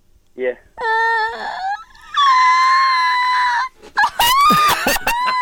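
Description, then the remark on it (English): A person lets out several loud, high-pitched screams, long sustained wails broken by short gaps, ending in a choppier, strained burst. “I'm screaming, I don't have my...”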